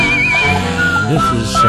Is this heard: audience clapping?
no